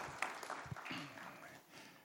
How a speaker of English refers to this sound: Give our brother a big round of applause. Thank you very much for that.